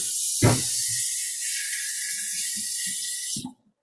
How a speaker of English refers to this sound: And now I can just wash my hands.